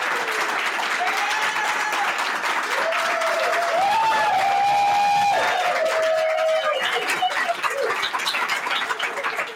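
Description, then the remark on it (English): A dense, sustained roar of audience applause at an event in Las Vegas fills the whole stretch at steady loudness, with rising and falling whistles and whoops from the crowd cutting through the clapping. “Maybe I'll just cut from that episode the applause and just plop it in here after your introduction.”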